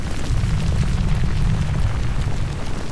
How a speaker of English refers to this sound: A little bit larger than ash is what's falling right now from Mount Pinatubo, which has been erupting steadily all afternoon.